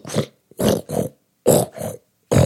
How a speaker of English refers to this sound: Then I took out the plunger and I started pumping the drain.